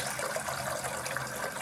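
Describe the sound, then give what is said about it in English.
Water splashes and pours steadily from a container into a sink as rice is washed, the water decanted off to leave the rice behind; a continuous trickling rush of liquid with no talking. “You just roll it around in the water and you decant the water, pour it off, leaving the rice behind.”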